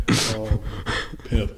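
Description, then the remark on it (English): A dog named Pepper, a female, snoring into a microphone placed on her: three or four loud, raspy snorting breaths in an uneven rhythm, each a rough nasal rumble with a hissy edge, with no talking. “She was just snoring, so Chaz put the mic on her real quick.”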